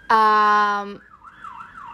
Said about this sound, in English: So I basically live at a hospital with the amount of sirens. Okay, because I live at a fire station.